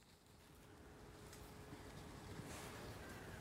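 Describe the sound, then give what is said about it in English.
A faint, steady engine drone from a tractor ploughing a field far off at Bereton on a dull, dank, grey autumn day, rumbling low beneath soft outdoor wind and hiss, with no voices. “I don't know if you can hear a sort of distant engine, but it's somebody ploughing.”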